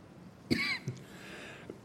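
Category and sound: human body sound, speaker coughing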